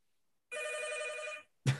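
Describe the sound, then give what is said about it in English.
A telephone rings once, a steady, buzzy electronic trill lasting about a second with bright overtones, then cuts off and is followed shortly by a brief, loud, low thump. “It's not my phone.”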